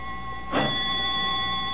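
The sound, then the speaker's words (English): A doorbell rings on and on as a steady, bright tone with a buzzing edge, broken once by a short, rough burst of noise partway through. No one speaks. “Only the doorbell.”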